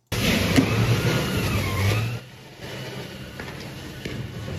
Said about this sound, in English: That's water cannons.